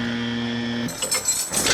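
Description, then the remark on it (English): A steady tonal hum gives way to a bright metallic jangle of skeleton keys shaken in irregular bursts for about a second, with no voices. “Dude, when they discover you smuggled in skeleton keys hidden in your booty, they'll add 10 years to your sentence.”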